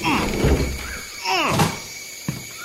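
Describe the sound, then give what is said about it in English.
A stuck door, bolted on this side, is yanked and rattled against its bolt, with creaking strains and a couple of dull thuds, while a voice is heard over the effort. “Damn door's stuck.”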